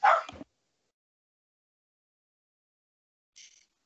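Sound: dog barking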